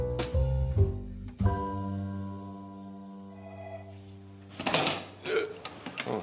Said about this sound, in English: Noisy door.